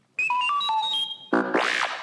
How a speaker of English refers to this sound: You can read along with C-3PO and me in your book. You will notice time to turn the page when you hear R2-D2 beep like this.